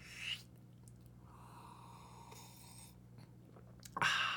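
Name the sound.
sipping a drink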